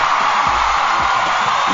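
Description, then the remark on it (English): A crowd at the program Inside the Industry cheers and whoops in a dense, steady roar that stays loud throughout, with no pauses and no clear voices standing out. “Yes, and the crowd is going wild.”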